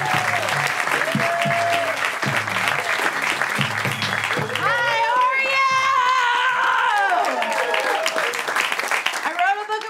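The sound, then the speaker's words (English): A comedy show crowd bursts into loud, sustained applause mixed with whoops and high-pitched cheers as comedian Jamie Loftus is introduced, the clapping a dense steady wash that stays strong for the whole stretch. “Make some noise right now for Jamie Loftus!”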